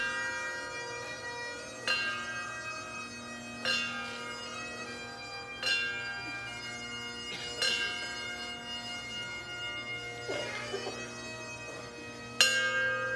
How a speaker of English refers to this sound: Cory's service was wrapped up with the trumpet playing taps, bagpipes playing Amazing Grace, and the bell toll, ringing the bell one time for each year of service.